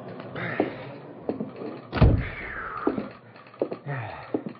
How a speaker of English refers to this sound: Dave shook the water from his raincoat and stomped into the side-tracked freight car that served as a telegraph office